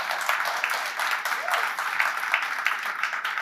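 A church audience applauds steadily throughout as a woman comes up to give her testimony, a dense wash of many hands clapping at once with no single claps standing out. The applause stays fairly even in loudness and no one speaks over it.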